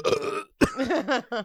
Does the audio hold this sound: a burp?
yes